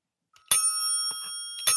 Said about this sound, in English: It sounds like our Skull Bike Bell to me.